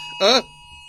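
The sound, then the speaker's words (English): A short, loud electronic phone emergency alert tone, an alert about an endangered elderly person, bursts out for a fraction of a second, harsh and buzzy with a bright, piercing upper edge, then cuts off into a low background hum. “We all got it. Oh, my phone's on airplane mode.”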